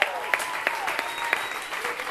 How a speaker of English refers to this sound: Round of applause for our real life teens.